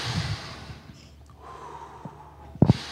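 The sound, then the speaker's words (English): Deep, breathy inhales and exhales, ending in a sharp, snort-like burst of breath near the end. No one speaks. “I realize this is probably a highly unpleasant situation for you, so let's first do some deep breathing so as to better center ourselves.”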